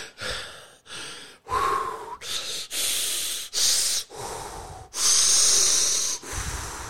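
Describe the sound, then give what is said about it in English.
A voice imitates heavy, labored breathing after walking up stairs: a rapid series of loud, rasping inhales and exhales with brief gaps, like someone panting and struggling to catch their breath. “Trying to stop myself from breathing heavy.”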